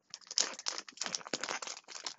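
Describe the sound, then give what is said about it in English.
Crinkling and crackling of the cellophane wrapper of a 2020 Prism cello trading card pack being torn open by hand, a dense run of sharp plastic rustles with brief pauses, no voices. “The next two are two wax I bought, both 2020 Prism Cellos, so I'm going to try to open these.”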